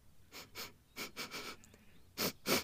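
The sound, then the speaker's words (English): Quick, breathy sniffs at a sweet-smelling bright pink flower, in short clusters, about seven or eight sharp inhales in pairs and triplets, moderately loud with brief pauses between groups and no talking. “The three mice stepped towards it to get a better sniff.”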